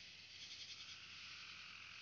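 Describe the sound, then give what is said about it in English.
Crickets chirp in a dense, unbroken chorus, a steady high-pitched shimmer that fills the woods at an even, moderate level with no voices. “Seems like crickets are having a say.”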